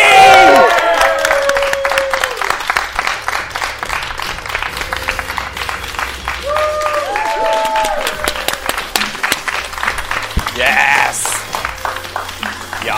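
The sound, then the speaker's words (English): A live crowd applauds loudly and steadily for about thirteen seconds as a former Progress Women's Champion is introduced, dense clapping mixed with rising whoops, cheers and a few shrill whistles, with shouting voices scattered through the noise. “How about a round of applause for a former Progress Women's Champion?”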